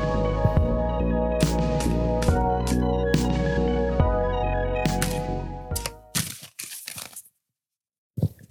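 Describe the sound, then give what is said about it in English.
Crisp, papery snaps and riffling from a deck of tarot cards being shuffled, first as sharp ticks over steady background music, then a flurry of rapid crackling riffles, a short silence, and one last burst. “Okay, so I've shuffled all the cards.”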